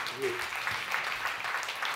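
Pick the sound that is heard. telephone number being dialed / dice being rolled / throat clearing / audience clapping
audience clapping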